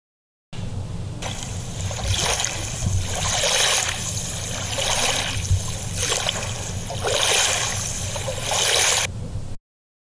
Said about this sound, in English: My feet felt unsteady as the waves lapped the stern of the boat.